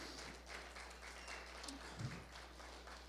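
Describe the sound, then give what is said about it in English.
An audience claps together as a hand clap of praise to the Lord, many hands blending into a dense, steady patter that holds evenly for about three seconds, fairly soft, with a faint low hum underneath and no one speaking. “Can we give the Lord a hand clap of praise in this house?”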